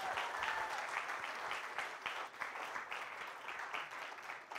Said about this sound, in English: Now let's give our volunteers a round of applause.